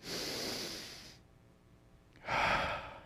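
A crowd draws in a long, audible breath together, a broad airy rush that fades to near quiet before a second loud whoosh of collective exhaling. No one speaks.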